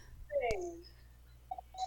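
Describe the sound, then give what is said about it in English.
A radio repeater's automatic station identification, sent near the 10-minute mark: a quick falling electronic tone with a sharp click, followed by a couple of short, moderately loud beeps over a faint background hum. “Was that yours identifying? Yeah, I think so. Mine identified too, I think.”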